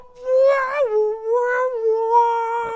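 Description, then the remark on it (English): Close voices mimic a brassy spy-movie trumpet fanfare, holding long, loud, wavering notes that swoop between pitches for a few seconds, with no words. “The score in this episode. Very like trumpety. It's excessively Bondy.”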